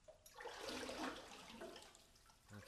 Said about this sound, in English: Well, wait, there's a big rock in the middle at the mouth. I guess the cave goes all around that. It's probably what makes the waves boom.